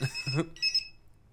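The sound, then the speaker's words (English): Two short electronic beep bursts from a pager, bright and high-pitched with a steady tone, separated by a brief pause, with some low voice-like sound at the start. “She has this pager that tells her if, Yeah, can we pause?”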